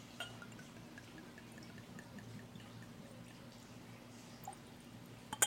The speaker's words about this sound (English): I think I can be a little generous on that pour.